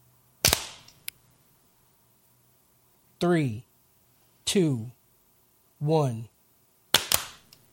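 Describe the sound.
Sharp, loud hand claps, made to sync a recording, crack out at the start and again at the end, with a voice counting "3, 2, 1" in the quiet gap between them.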